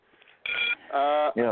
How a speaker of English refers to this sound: I have one phone which is giving us quite a bit of crunch here, crunch there.